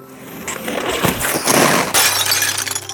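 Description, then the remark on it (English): A large mirror shatters loudly, with several crashing bursts of breaking glass followed by sustained tinkling shards, over a faint low hum and no voices. “And together, he and I crashed into a large mirror and made history.”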